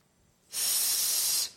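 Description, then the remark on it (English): One steady, sharp hiss breathed out through the teeth, the Aggie version of booing, lasting about a second at an even, fairly loud level, then cutting off. No talking accompanies it. “Our Aggie version of booing, he knows, what is it?”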